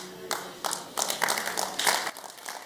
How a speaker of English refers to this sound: You singles, what are you clapping for?